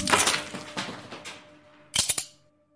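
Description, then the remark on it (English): A sharp crunching crack of the last ice cube under a nutcracker on a balcony, with brittle fragments rattling away, then a quick burst of three snapping cracks before silence. “takes a puff of his cigarette, picks up the nutcracker, and cracks the last ice cube.”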